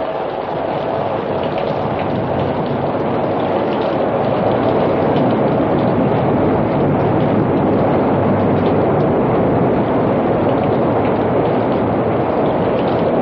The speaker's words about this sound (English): Here comes the water. We got him out just in time.